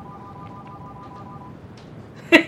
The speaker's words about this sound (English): There's my home phone. A telephone.